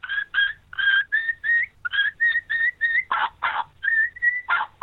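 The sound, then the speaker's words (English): A turkey kee-kee run on a Woodhaven mouth call: quick strings of high, thin whistled notes, broken near the end by a few coarser, raspy yelps. Fairly loud, with no talking. “And your Kiki run, which I say the easiest way to learn a Kiki run is just put the call in your mouth and say PPP three times with that high whistle.”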